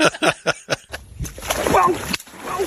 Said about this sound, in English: What'd he catch? What'd he catch? Oh, God, he caught something huge and drug him in the water.